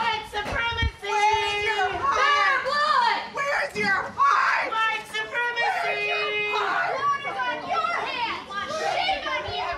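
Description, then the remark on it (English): A crowd of many voices screaming and shouting together, loud, with high-pitched overlapping cries rising and falling in a continuous emotional uproar as the crowd reacts to a bill being passed, people crying, screaming and chanting. “But the bill still passed, and when it did, the crowd couldn't contain themselves.”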